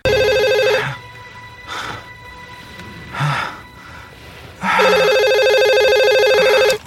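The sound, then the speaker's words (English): Eugene Meltzner's telephone rings in two long bursts separated by a pause, with faint breathy sounds in between; the tone is bright and steady, and nobody answers. “He's not picking up his phone.”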